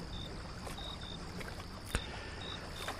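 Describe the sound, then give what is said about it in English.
A small boat glides back toward a dock through water with a steady, soft wash of lapping sound, broken by a single faint knock and thin intermittent squeaks. No one speaks. “Our boat is nearing the dock. It glides back towards the forlorn dock where our journey began.”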